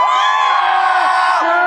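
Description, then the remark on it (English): A crowd at a Trump rally cheers and whoops loudly and continuously, a dense wash of overlapping shouts with a few rising yells cutting through. “What's the enthusiasm level out here? How pumped are you?”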